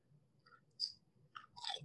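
Crunchy chewing of a peanut butter cup snack, with a few sharp, crackly bites in quick succession over a low, muffled background hum. No one speaks.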